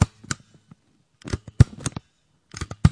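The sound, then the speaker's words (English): A stapler being pressed, with three clusters of sharp mechanical clicks and clacks separated by short pauses. No voices accompany the sound. “That was definitely a stapler.”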